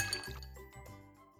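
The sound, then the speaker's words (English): A drink being poured into a glass, with a bright clink at the start and a few softer ringing taps as the liquid settles. Brief and fairly quiet, with no voices. “Pour me a drink.”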